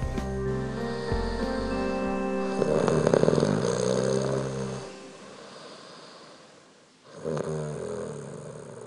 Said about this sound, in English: The funny thing is that you snore too, but I don't mind.